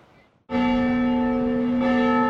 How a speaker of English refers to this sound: The bells have been ringing at the mission for more than two centuries.